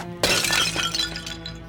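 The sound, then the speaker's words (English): A cup thrown down smashes with a sudden loud crash, bright shards of breaking glass or crockery scattering and tinkling briefly before fading into a low steady hum. “He'd barely taken a sip before he threw the cup down.”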